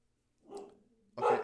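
A female dog barks twice, first a softer, drawn-out yelp trailing into a whine, then a louder, sharper bark right after a brief pause.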